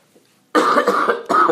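A short run of harsh, raspy coughs, two bursts in quick succession after a moment of near silence, with no talking.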